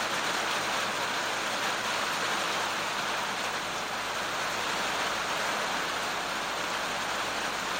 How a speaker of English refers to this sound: I almost wonder if I should talk or if it let you listen to the rain. It's so great. It's so peaceful to me too.